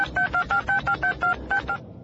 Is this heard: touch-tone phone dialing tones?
yes